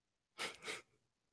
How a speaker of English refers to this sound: Sorry about that. Getting over a cough. So these things can be persistent.